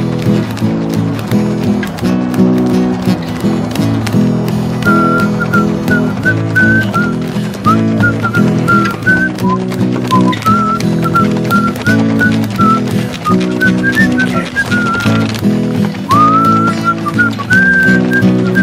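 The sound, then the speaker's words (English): A man whistles a lively, wavering tune high above a busy, rhythmic musical backing, the melody running steadily through the whole passage with brief pauses and a rising swoop near the end. “I whistle I whistle while I work.”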